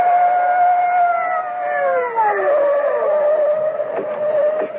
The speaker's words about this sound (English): Above them on the bank, at the edge of the circle of light from the overhead street lamp, the bushes still wave slightly in the wake of Augie's flight from the blare of police sirens as two patrol cars come hurtling out of the night.